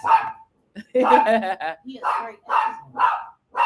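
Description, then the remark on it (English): A small dog, a Chihuahua named Zoe, yaps in a quick series of high-pitched barks, fairly loud, with short gaps between bursts and one longer run of excited yipping. “Calm down. The Chihuahua.”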